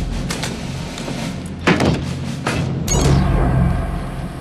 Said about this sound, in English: I think this is a door. There's no name and no number. Let's see it.